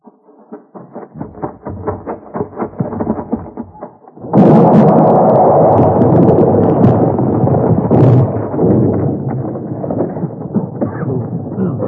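After a few seconds of light, irregular tapping and shuffling, a dynamite blast set off with a short fuse in a mine erupts in a sudden loud roar that stays heavy and rumbling for several seconds, with crackling debris layered through it.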